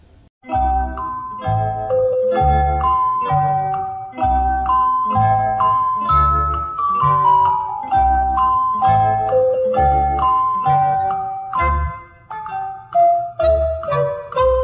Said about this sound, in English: And phone calls coming in all the time. Hold on, now we gotta cut. Gotta answer this phone call.